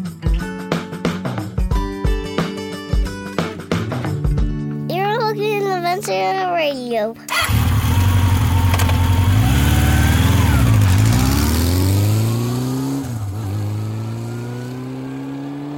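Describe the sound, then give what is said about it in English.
A motorcycle engine rumbles loudly and revs up and down over several seconds, following a stretch of other tonal sounds that may include voices. “but if you listen after you hear the motorcycle, you're going to hear a little soapbox.”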